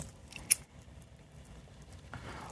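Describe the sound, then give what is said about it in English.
A lighter clicks once, sharp, followed by quiet fumbling and a soft rushing hiss near the end as the flame catches to light a joint. No one speaks. “You want to start up that joint? Yeah. Yeah, please.”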